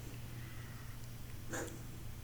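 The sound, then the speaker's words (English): A cat named Sookie gives a single short, harsh cough outside the door, muffled as if behind it, over a steady low background hum with no talking. “Sookie's coughing outside the door.”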